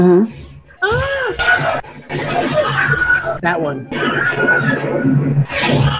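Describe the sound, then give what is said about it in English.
A man's short, sharp scream rises and falls early on, the familiar stock movie scream of a man being shot, played from a compilation of film clips, set against busy film soundtrack noise, with people talking over it afterward. “You hear that scream?”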